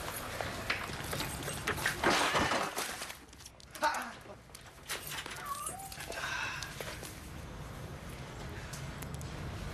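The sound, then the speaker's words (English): A dog whimpers a few times, soft, high-pitched whines rising and falling, over a busy background with faint voices and shuffling noise. “Look at the cute dog.”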